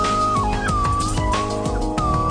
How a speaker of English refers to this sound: That's what they call a slide whistle.